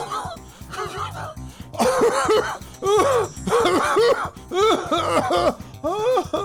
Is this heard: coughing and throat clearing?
yes